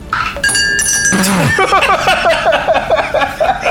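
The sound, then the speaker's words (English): Dice clatter and clink into a glass during a tabletop role-playing game, with bright, ringing tones near the start, followed by a stretch of rhythmic chuckling laughter. “It's in the glass. It is your responsibility to roll the glass. I mean, dice.”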